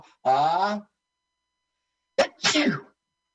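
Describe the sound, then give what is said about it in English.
A single loud, genuine, unplanned sneeze: a drawn-out voiced intake, a second of silence, then a sharp explosive burst with a short noisy tail. “That was a genuine sneeze, by the way.”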